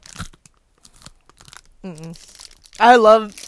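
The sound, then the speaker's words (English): Crunching of stale marshmallow Peeps candy: scattered crisp, crackly bites over the first couple of seconds, followed by two short voiced sounds, like a hum and a drawn-out vocal reaction. “Can you keep that crunch in full volume?”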